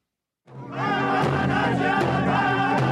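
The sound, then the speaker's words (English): After a brief silence, a large crowd of the Standing Rock Sioux and thousands of others gathered to stop the Dakota Access Pipeline bursts into loud, sustained cheering and whooping at news of a possible rerouting, with a few sharp drumbeats punching through the steady roar of voices. “Drumbeats, cheers, and tears. The sound of victory for the Standing Rock Sioux and thousands of others gathered to stop the Dakota Access Pipeline.”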